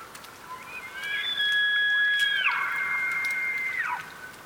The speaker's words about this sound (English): I thought of an evening under a thicket of cottonwood, the leaves making a soft rattle, and then the bugle of an elk.